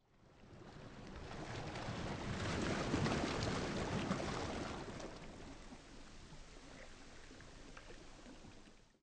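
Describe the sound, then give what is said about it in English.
Ocean waves break on the shore by the sea at Pentapolis, a broad rushing surge that swells to a loud peak and then recedes into a softer, steady wash of foam. No one speaks. “Pentapolis, an open palace by the sea.”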